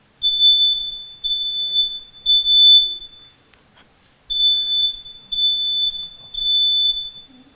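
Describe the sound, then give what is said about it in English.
A fire alarm sounds loud: two bursts of three piercing, high-pitched beeps each, separated by a short pause, with no talking. “Is that the fire alarm or something else?”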